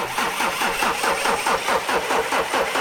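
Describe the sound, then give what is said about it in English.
The Seeker-mobile's engine cranks over and over as it is rebooted with lightning through connected cables, a rapid, even chugging rhythm of mechanical pulses that stays loud and steady throughout, with no voices. “Run them down to the Seeker-mobile, connect them up, and I will harness the lightning to reboot your engine.”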